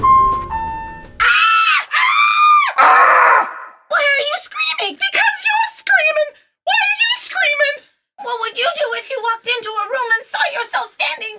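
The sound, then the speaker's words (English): Two loud, high-pitched screams ring out back to back near the start, after a brief tone, followed by excited, strained vocalizing in bursts that sound like shouted or shrieking speech. “Why am I screaming?”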